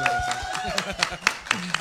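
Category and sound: crowd, audience clapping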